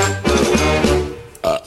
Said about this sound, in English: Wyatt Earp? He makes me burp.